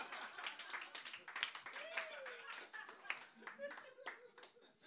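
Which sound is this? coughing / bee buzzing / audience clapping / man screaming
audience clapping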